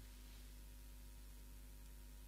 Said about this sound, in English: Right now, if you listen to the sound, there's the voice and there's the quiet hum of the heating.